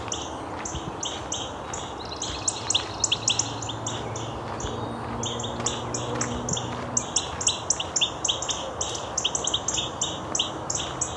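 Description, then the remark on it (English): Cardinals give sharp, repeated chip notes in rapid, overlapping bursts, several birds calling back and forth at close range over a low outdoor rumble, with no talking. “Very active cardinals. Might be a dispute over territory here. All this ticking, it's not song.”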